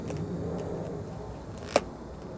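An airplane taking off, flying low but not very close: a steady, broad, low roar that holds at an even level throughout, broken only by one short sharp click near the end. No one speaks.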